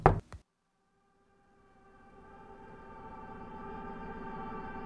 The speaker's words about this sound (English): It seems to be working for a while until you hear a very real sounding knock on your door.